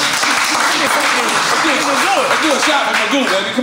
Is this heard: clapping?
yes